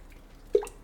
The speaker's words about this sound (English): I'm gonna take a sip. That was, whew, good Lord. Good Lord.